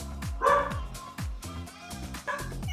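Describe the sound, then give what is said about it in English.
A dog barks repeatedly in quick, uneven bursts, fairly loud, with a few higher yips mixed in over a steady low background. “So my track of the week, as my dog starts barking in the background.”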